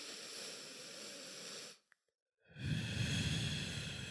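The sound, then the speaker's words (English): A long, deep inhale of air is followed by a brief pause, then a slow, heavy, breathy exhale, with no talking, done as a breathing exercise. “what we do when we're really stressed, we like to do this whole breathing exercise thing.”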